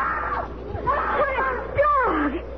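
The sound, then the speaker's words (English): A high, wavering scream-like vocal cry swoops up and down in pitch several times over a couple of seconds, moderately loud against a faint murmur of background noise. “Do what again? The scream. Do it again.”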